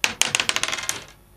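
Dice are rolled for a fortune roll, clattering across a hard tabletop in a quick run of sharp, bright clicks that tumble faster and quieter before settling into silence, with no voices.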